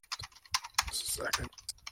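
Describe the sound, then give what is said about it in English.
Irregular, crisp clicks of typing on a computer keyboard, with the typist's soft whispering voice, thinking out loud, murmuring underneath partway through. “Thinking out loud or speaking out loud when I'm typing.”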